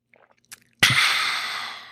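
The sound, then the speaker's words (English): A few soft mouth clicks, then a sudden loud, airy slurp as someone sips water, trailing off gradually over about a second. No talking. “Let me get another sip of water.”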